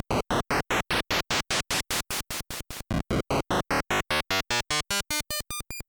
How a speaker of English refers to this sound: If you remember from our NES episode, the NES noise channel offers 16 preset pitches across two modes. There's a normal mode and a loop noise mode, giving you 32 possible tones of noise.